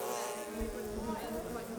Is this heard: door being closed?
no